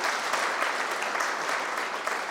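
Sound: audience round of applause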